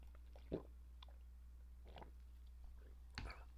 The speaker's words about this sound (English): I'm just going to grab a sip of water here.